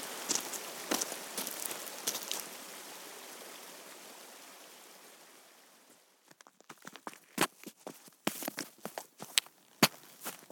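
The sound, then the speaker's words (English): Footsteps crunch up a rocky mountain path toward slate quarries, the tourist route once used by quarrymen, a steady series of sharp scuffs on stone following a stretch of rushing water noise that fades away. “What we really need to do is get our feet moving up that mountain to get closer to those quarries and particularly get to those caverns higher up, perhaps, before the rain comes.”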